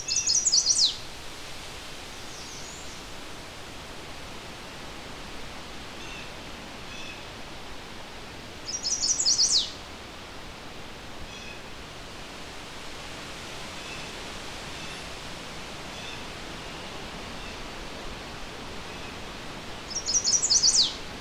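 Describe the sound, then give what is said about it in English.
A chestnut-sided warbler sings a few feet away, vocalizing a lot: three short bright phrases spaced roughly ten seconds apart over a steady background hiss, with no talking. “I found in general, chestnut-sided warblers are not as skittish around people.”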